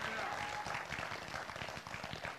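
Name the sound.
audience clapping and applauding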